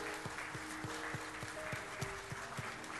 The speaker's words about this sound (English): Can we give these folks a round of applause this morning?